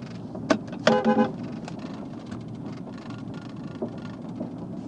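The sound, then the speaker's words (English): A brief car horn honk, a short tonal blast of about half a second, sounds over steady low engine and road rumble from inside a moving vehicle, with a sharp click just before it. The driver honks at people smoking cigarettes on a back porch. “Got some people on the back porch here smoking some cigarettes. I'm a honk at them.”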